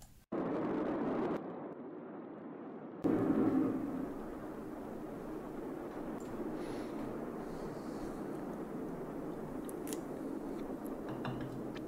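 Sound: large explosion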